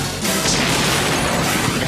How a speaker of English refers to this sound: Oh. A lot of explosions.